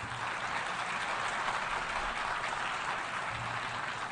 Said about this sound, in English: Well, you applaud now, but at the time, many dismissed my optimism as wishful thinking.